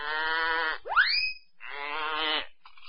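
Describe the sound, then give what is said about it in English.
A goat bleats twice, loud and close, with long wavering calls separated by a brief rising, whistle-like sweep. No one speaks. “Little goat bleat, little elf here.”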